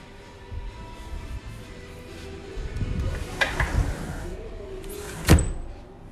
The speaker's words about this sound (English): I gotta shut the door.